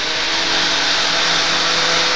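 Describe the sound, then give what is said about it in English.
A blender runs steadily at full power, blitzing a lime smoothie of coconut milk, banana, grated lime zest and lime juice: a loud, dense whirring roar with a faint steady motor hum beneath it, holding constant without pause or change for about two seconds. “It's in the blender. Okay, it's going in. Gonna be blitzed.”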